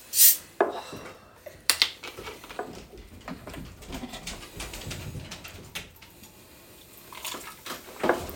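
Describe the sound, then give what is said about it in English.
One cup of Starry lemon-lime soda glugs and splashes into a cup, fizzing steadily for several seconds after a few sharp clinks at the start, moderately loud with no talking. “The bartender pour does not work. Does not work with soda.”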